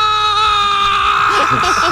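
A long, loud human scream, played from a recording, holds one high, steady pitch for the whole stretch, and a voice starts talking faintly underneath near the end.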